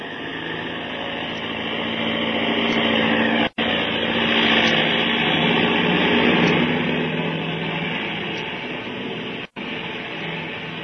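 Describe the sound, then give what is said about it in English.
A propeller airplane engine drones steadily in flight over the Panama Canal, heading northeast toward Puerto Rico, a loud, continuous hum with a rough, buzzing texture, briefly cut twice by sudden gaps of silence. No one speaks. “But aren't we flying in the wrong direction?”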